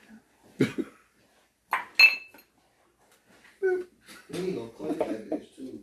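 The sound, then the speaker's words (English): Ice cubes, one of them big, clink into a glass: three sharp, bright knocks in the first two seconds, one with a brief ringing tone, followed by muffled voices talking. “That's a big ice cube, bro.”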